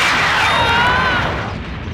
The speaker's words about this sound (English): They get incinerated by lightning. So that explains all these piles of ash.